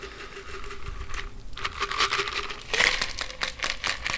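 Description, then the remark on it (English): A cocktail is double strained from a shaker tin through a Hawthorne strainer placed on top: a steady crackling trickle of liquid with faint ticking, swelling brighter and busier partway through, with no voices. “I'm going to place my Hawthorne strainer on top of the shaker tin, and I'm going to double strain.”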